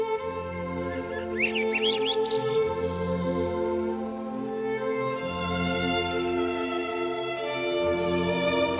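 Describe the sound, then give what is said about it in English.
Birds call at dusk in a brief burst of high, rising chirps near the start, then fade as night falls, over a steady, sustained tonal drone that carries on throughout. “Let's listen as the last bird sounds of the day recede into nightfall.”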